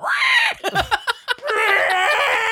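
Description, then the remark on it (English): Two voices imitate the roars of Godzilla and Godzuki: a loud, high, strained screech, a few choppy vocal bursts, then a second long, shrill roar that holds steady to the end. “That's the worst roar ever. Both of ours. I think we nailed it. Godzilla and Godzuki.”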